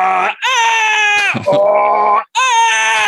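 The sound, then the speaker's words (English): A voice imitates exaggerated anime battle screaming of two armored fighters in a Power Ranger style fight: a few loud, strained, sustained yells in quick succession, each held for about a second with brief breaks between. “And so you had, they're both in armor, and one guy's like, ah, and he's all, ah, ah, and it's just them making the flying kick pose with speed lines drawing past them for like 30 seconds.”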